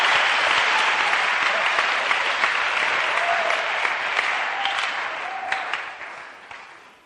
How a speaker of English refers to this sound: Look, if you are clapping, clap. If you don't want to clap, just don't clap.